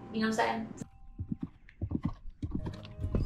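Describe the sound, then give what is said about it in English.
A horse lets out a loud, quavering whinny as a woman is about to get on it, then its hooves clip-clop in a steady rhythm of several sharp knocks. “is about to get on a horse.”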